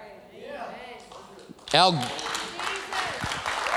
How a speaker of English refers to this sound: Yeah, see, if you clap, it gives me time to breathe.